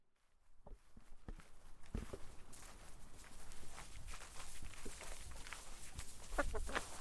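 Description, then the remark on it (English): Robin chicks cheep and chirp in quick, high bursts as a parent robin feeds them, with rustling and scratchy movement underneath and the calls growing busier toward the end. “I can hear him feeding his babies.”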